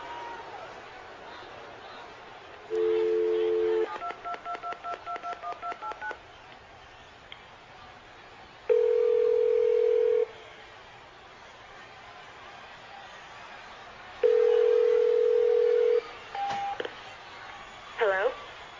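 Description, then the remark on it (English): A telephone is dialed on Stone Cold Steve Austin's direct line: a short steady tone, then a quick run of about nine electronic keypad beeps, followed by two longer steady tones. A few short beeps come near the end, over faint background noise. “Triple H, I don't need your cell phone tonight. I got a direct line.”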